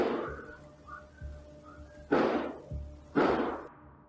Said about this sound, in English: A half an hour earlier that night, at 10 p.m., the same surveillance camera recorded eight loud bangs, sounding like gunshots.